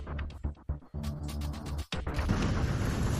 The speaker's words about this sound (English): And the sounds of explosions. That one was loud.